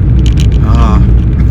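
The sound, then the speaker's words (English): Steady, loud low-pitched rumble of a car interior, the constant road and engine drone filling the space, with a brief muffled voice rising over it midway. “Anyway, because like, I'm doing it in my car, that's what I mean.”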